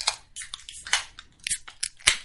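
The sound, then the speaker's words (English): A can of Busch Light beer being cracked open, heard as a string of sharp, crunchy metallic snaps and crinkles in uneven bursts with a brief hiss. Nobody speaks. “Let's crack a Busch Light for the Buckatorium.”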